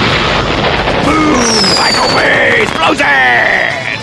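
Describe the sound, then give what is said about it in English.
A loud, continuous barrage of explosion effects, with dense booming and crackling layered under whistling, sweeping tones, sustained at full volume for several seconds. “So yeah, there will be lots of explosions.”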